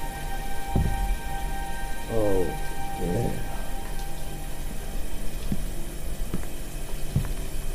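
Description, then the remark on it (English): A steady hiss of hot running water pours on without a break, like a shower spraying. A few brief murmured vocal sounds rise over it early on, with faint knocks scattered through. “This water is just the ticket.”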